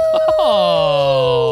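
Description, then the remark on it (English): A person imitates a wolf howl: a loud, sustained vocal tone that slides slowly downward in pitch for over a second, preceded by a couple of short vocal bursts. “The howl is back.”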